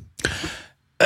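human body sound, hawking up phlegm

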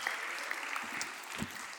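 crowd, round of applause

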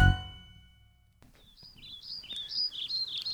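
bird, birds chirping outdoors

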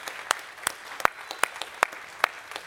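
crowd, church audience applauding

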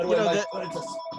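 signal or alarm, telephone ringing

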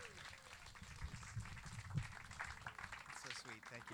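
crowd, audience clapping and cheering

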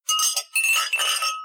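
household object, glasses clinking

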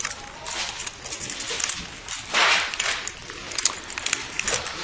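household object, keys jangling

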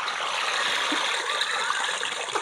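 nature, creek water running

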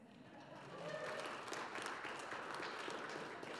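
crowd, applause

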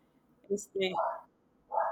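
animal, small dog barking

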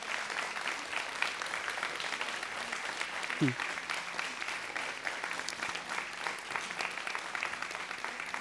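crowd, audience applauding

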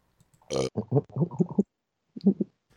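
human body sound, burp

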